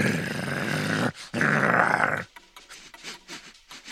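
Two dogs meeting sniff each other's rear ends: two long, breathy snuffling bursts, then a quicker run of short sniffs and faint snorts, with low grumbling undertones and no talking.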